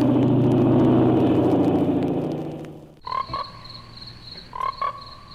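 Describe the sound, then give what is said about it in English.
In a trailer for the American International Pictures film Frogs, a low rumbling roar fades out, then frogs croak in two short, loud bursts of raspy, trilling calls, with faint background noise between them. “Frogs lay hundreds of millions of eggs every year.”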